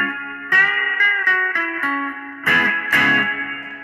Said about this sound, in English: I mean, there's other reverb models in this thing that are just really great. The Arena Reverb. Let's see what that sounds like.